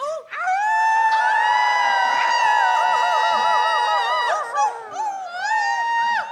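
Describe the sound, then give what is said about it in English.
An audience howls together like a pack of wolves instead of clapping, many overlapping rising and wavering voices sustained loudly for several seconds, briefly dipping before a final swell of howls. “If you get tired of clapping, it's really fulfilling to howl like a wolf instead.”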